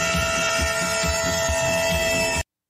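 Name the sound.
train passing nearby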